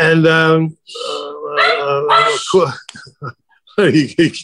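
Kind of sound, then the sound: animal, dog growling and barking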